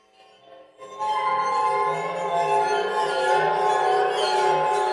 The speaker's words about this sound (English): Yeah, like they, it's a water phone where they always play that as like the spooky sound, but it sounds like they're really rocking out on it, like getting a little excited there.